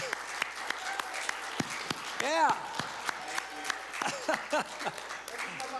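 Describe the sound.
A church audience claps in sustained applause for their pastor, a dense wash of overlapping hand claps with scattered cheers and voices calling out over it, staying fairly steady throughout.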